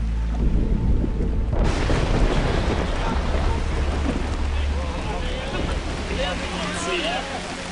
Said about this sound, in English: Behind me, it's raining.